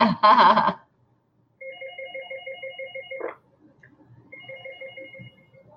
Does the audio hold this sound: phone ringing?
yes